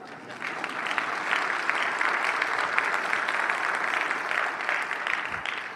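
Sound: audience clapping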